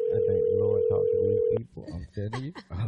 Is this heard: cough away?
no